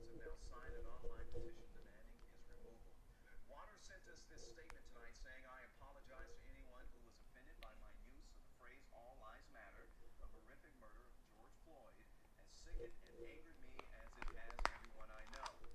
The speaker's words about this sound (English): I'm typing Mr. Gerald Bird. That's his name.